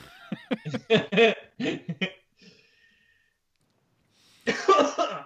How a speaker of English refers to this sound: thanks for coughing right in the mic there.